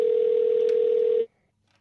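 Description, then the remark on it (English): A steady, unbroken telephone dial tone hums at a constant pitch for just over a second as a call is placed to a home number, then cuts off abruptly into near silence. No voices are present. “Oh, I'm calling his work number. Hold on a second. He no longer works there. Home number.”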